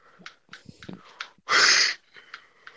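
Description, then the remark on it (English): One loud, breathy yawn bursts out, a short rush of air standing out against quieter breaths and small rustling noises, with no talking around it. “Sorry, I did a big yawn.”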